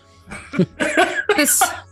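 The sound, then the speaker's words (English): A voice imitates a wounded man with a pierced lung coughing up blood: three harsh, wet, sputtering coughs in quick succession, loud, with a gurgling, strained edge. “and you're administering first aid and you're trying to bandage, you're trying your best to bandage while he's trying to handcuff, and he just starts coughing up blood.”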